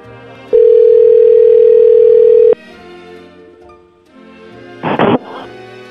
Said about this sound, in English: Yeah, let's call this person. Oh, wow, you've dialed already